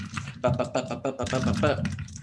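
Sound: dice being rolled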